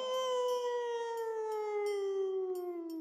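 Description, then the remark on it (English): A lone wolf howls in one long, unbroken note that slides gradually downward in pitch, steady and fairly loud, with no voices or other sounds around it. “And this also must be why it causes wolves to howl at the moon, right?”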